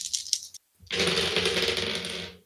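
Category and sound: dice being rolled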